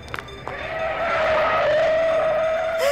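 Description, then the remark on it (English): A car being flagged down in Paris skids to a stop with a long, loud tire screech that holds a steady squealing pitch for a few seconds before cutting off abruptly. “Quick, flag down that next car.”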